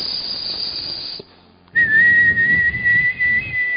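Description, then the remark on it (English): A breathy, hissing rush of air, a brief pause, then a long steady high-pitched whistle carried over loud airy hiss, held unbroken for about two seconds. No one speaks. “God says that I will stand and I'll hiss to the people.”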